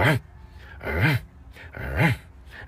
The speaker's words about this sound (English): It's like, what exactly are you barking at? Me again? Because I'm just over here sitting here. Like, I'm behind a wall, actually, over here. So you can't even see me.